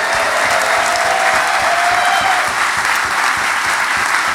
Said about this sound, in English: Can you give him a round of applause, please?